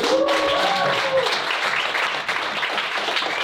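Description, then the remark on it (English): A stand-up comedy audience claps and applauds steadily, a dense, loud wash of hand claps sustained throughout, with a few faint voices and a brief tonal cheer near the start. “And since then, I've done 1,000 shows, so clap it up for that.”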